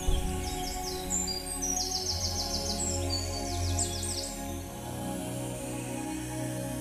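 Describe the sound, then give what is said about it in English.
Birds chirp and trill in quick repeated bursts high above a steady low ambient hum, several calls overlapping in an outdoor scene in the woods with no voices. “Notice the sounds of the birds and animals fading away as you walk.”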